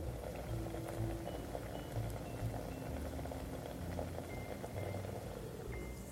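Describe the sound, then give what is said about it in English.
Cream just starting to simmer in a pan around an ingredient laid in a single layer gives a steady, low bubbling hiss with scattered tiny pops and crackles, holding an even level throughout with no voices. “Can you hear that simmering just starting to happen?”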